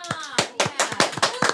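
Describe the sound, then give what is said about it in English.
A short burst of studio audience applause: a quick, steady run of sharp, loud claps, with a faint voice murmuring underneath. “Let's give them a clap. Studio audiences.”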